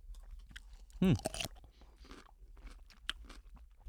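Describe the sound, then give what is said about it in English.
A loud crunchy bite of a pickle, followed by several seconds of quieter wet chewing and small crunches, with no talking. “But it has more crunch than you would think.”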